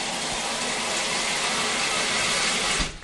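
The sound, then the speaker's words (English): A steady hiss of water running from a tap in a West Auckland home, fitted with a small plastic flow-restricting device that reduces it to about 2 litres a minute, constant and fairly loud for a few seconds before it's shut off and cuts away abruptly near the end. “It's reduced at about 2 litres a minute,”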